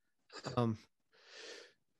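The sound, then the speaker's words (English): A single sneeze: a short, rising voiced intake followed by a brief pause and a breathy, hissing burst of air, moderately loud and heard on its own. “pardon me. Excuse bless you. Bless you.”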